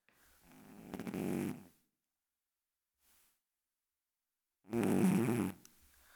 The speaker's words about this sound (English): I've been really distracted by the fact that the cat is sat behind me on the sofa and he's snoring her fucking ass off. I'm gonna see if I can get the microphone in here and see if I can get this on there.